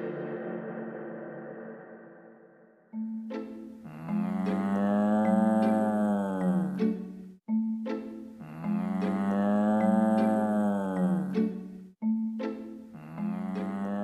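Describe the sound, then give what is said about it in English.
Loud cow moos: three long, drawn-out bellows in a row, each lasting a few seconds, the last one cut short, with a low murmur of sound before the first call. “In this third episode, we shift our focus from crops to livestock, specifically dairy products made from cows.”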